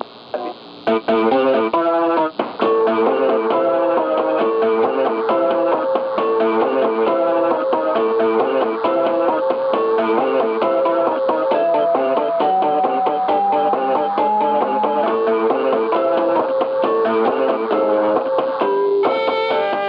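A wordless instrumental tune, played over the phone by a call-in song service, plays steadily at full, even loudness, with layered melodic lines and sustained chords, a slightly distorted, effects-heavy tone, and no voices throughout.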